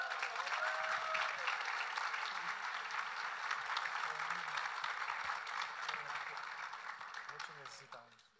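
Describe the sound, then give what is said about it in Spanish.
An audience applauds steadily as a round of applause to God, a dense wash of clapping that holds for several seconds and then begins to thin out at the end, with a brief voice or tone showing early on. “I think we should give a round of applause to God.”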